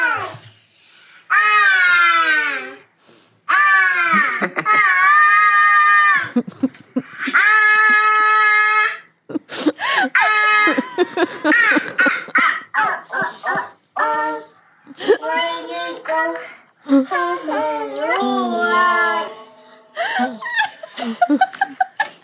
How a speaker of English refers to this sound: Using the voice modulators. Let's do it. Which is why the soundboard gets messed up every week. So you guys can listen to what it's like to have a toddler have access to a soundboard.